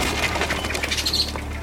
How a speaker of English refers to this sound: The sound of industry echoes through the surrounding woodland, sending a flock of startled birds spiraling up into the bright autumn sky.